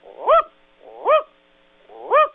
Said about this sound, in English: They're bigger birds, and they have deeper voices. If you'll allow me to indulge you with a raven call.